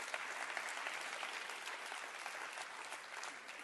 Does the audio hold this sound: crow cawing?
no